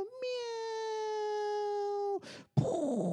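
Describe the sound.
A person's voice imitates a cat with one long, drawn-out, steady meow, loud, followed by a short breathy burst and the start of another vocal sound.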